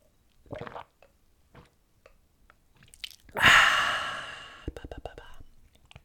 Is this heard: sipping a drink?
yes